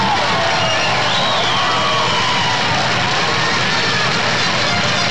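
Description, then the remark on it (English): A loud, excited crowd cheers and shouts continuously, a dense wash of voices with a few higher whoops rising above the roar, steady throughout without a break. “The crowd's all fired up.”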